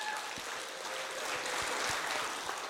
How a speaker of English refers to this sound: And I just have to say, I am so proud of all of you who helped out with our Boo Bash. Will you give yourselves a round of applause for that?